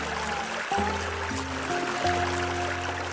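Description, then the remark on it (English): Rushing water of Mill Creek, a stream-fed river in the Midwest, in full flight, pours steadily throughout, a continuous hiss and roar, with low sustained droning tones shifting underneath it. No one speaks. “That day, the river was in full flight.”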